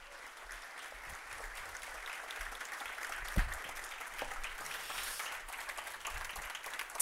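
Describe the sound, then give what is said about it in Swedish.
A crowd applauds warmly, a steady dense wash of many hands clapping that holds at an even level throughout, with a few sharper claps standing out, welcoming the evening's guest Ebba Busch Thor onto the stage. “Och med det sagt så ber jag ge en varm applåd till Ebba Busch Thor.”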